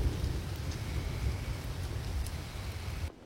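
A thunderstorm outside: steady rain hisses in a dense, even wash while a deep, continuous rumble of thunder rolls underneath. No voices are heard, and the storm cuts off abruptly near the end.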